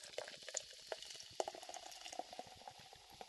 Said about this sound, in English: Hey, would you like a soda? I'll just pour one here for you.